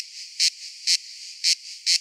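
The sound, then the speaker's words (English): A periodical cicada chorus buzzes steadily in a high-pitched drone, swelling into louder pulses about twice a second. It is heard alone, with no voices. “A cicada episode? All those in favor? Scream like you've been in a bunker for 17 years and you're horny as hell.”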